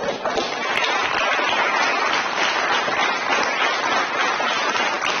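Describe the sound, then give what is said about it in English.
A studio audience applauding steadily for about five seconds, laughing and clapping along with Bill Maher. A dense, even wash of clapping at a constant loud level, with no clear voices standing out above it. “This audience is like laughing with him and clapping, but he is sounding like an apostate to people like those people.”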